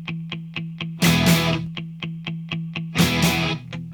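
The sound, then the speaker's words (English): Distorted rock guitars chug a steady, evenly spaced eighth-note pattern, the second guitar doubling the first and panned to one side, while the drums play a simple snare hit on every beat, with two louder crashing drum accents breaking in. The playing is loud, with no voices. “The drums come in with a simple snare hit on every beat. The second guitar starts to double the chugging eighth note pattern of that first guitar.”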